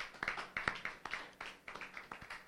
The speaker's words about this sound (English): Praise the Lord Jesus. Someone give the Lord a clap offering.